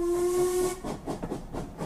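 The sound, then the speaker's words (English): The whistle of an early steam train from St. Mary Mead blows one steady, piercing tone for under a second over a loud rush of hissing steam, then fades into chuffing, rumbling train noise. “I caught an early train from St. Mary Mead, and two changes, and a taxi ride later.”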